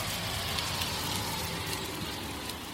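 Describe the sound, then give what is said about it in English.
Steady rain falls outdoors around 7 p.m. on a stormy day in Austin and New Braunfels, a dense, even hiss of drops with faint pattering on surfaces, continuous and moderately loud throughout with no voices. “So about to make my way in, but it's raining, so I'm going to shut the recorder off for just a brief moment.”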